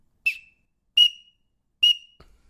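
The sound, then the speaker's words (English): A person blows into a duck whistle imitating a green-winged teal drake: three short, sharp, high-pitched peeps, evenly spaced about a second apart, clear with no talking. “Here, this is just me blowing into it. That's what a teal sounds like. Green wing, male, blue wing, do not make that noise.”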